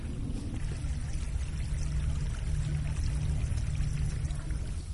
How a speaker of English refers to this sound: Having just talked about water, now that we've come down to Mount Davis Path, I can actually hear some of it trickling down the hillside, and that just shows how quiet this is.